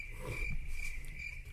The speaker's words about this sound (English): Crickets.